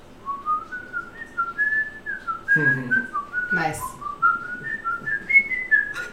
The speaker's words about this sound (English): Y'all should just start a whistle band. Yeah, obviously. There you go. That sounds great.